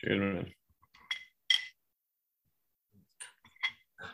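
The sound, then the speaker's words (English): Metal bullet-shaped whiskey stones clink against a glass of poured Scotch whiskey several times, bright, in short scattered taps with pauses between. A brief voiced sound comes right at the start. “I forgot how I got those, but yeah, I got frozen bullets in mine.”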